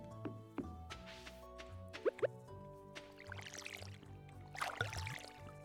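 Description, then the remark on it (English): A video game watering can fills from a pond with a splashy burst of bubbling water, cut short and then repeated, over steady background music with a few plopping drips. “Yeah, it looks like we can fill using the pond”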